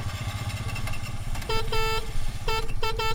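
A Piaggio Ape, a tiny three-wheeled Italian truck built like a Vespa scooter, putters steadily, joined halfway through by a series of short, bright horn beeps, some quick and some held a little longer.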